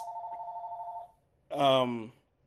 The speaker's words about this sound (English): Don't mind the house phone. It's old people live here.